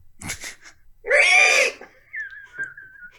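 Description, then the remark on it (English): Someone vocally imitates the screech of Man-Bat from Arkham Knight: a brief raspy lead-in, then a loud, strained, harmonic shriek lasting about half a second, trailing off into a thin, high, wavering whistle-like tone. “And I really hope someday, because it won't be Robert Pattinson, that we'll get some kind of live action adaptation of this kind of Batman, where he doesn't just screech all the time.”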